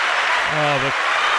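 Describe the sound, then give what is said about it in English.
Crowd applause sound effect, played by a show host as the co-host is introduced: a dense, steady wash of clapping fills the whole clip, with a short voiced cheer rising briefly over it about halfway through. “The crowd's going wild.”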